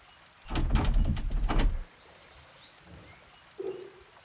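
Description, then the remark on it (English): A locked cabin door by a lake is pulled by its doorknob and rattled hard against its lock, a burst of quick clattering jolts lasting just over a second, followed by quiet and one faint soft knock. “Sam staggered forward, catching up just as Timothy held the doorknob and pulled.”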